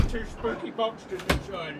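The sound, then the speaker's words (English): A cupboard door slams shut once with a sharp bang partway through as someone is locked inside the cupboard, while voices talk before and after the impact. “Yeah, I'm going to lock you in the cupboard.”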